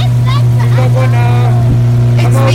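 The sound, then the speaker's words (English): A motorboat engine drones steadily and loudly from start to finish, a constant low hum, while a voice talks over it in the foreground. The motorboat is travelling on a jungle river from village to village in Moka. “And this is how we travel from village to village where we are in Moka.”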